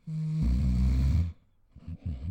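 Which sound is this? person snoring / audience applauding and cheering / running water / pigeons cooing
person snoring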